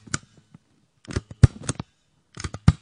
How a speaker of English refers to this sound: Anyway, that was actually a stapler. A stapler. Yeah, really, a stapler.